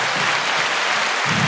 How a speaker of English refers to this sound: Are we giving a round of applause for the Grammys? No. Yeah, round of applause. For the nominees they picked.